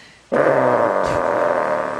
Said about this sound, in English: Well, that's a big fart. That's not a normal fart.